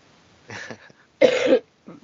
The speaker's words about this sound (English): I'm going to apologize in advance. The snow mold has gotten to me, so I'm coughing, sniffling, and sounding funny.